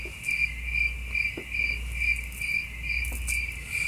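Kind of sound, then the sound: sound effect, crickets chirping sound effect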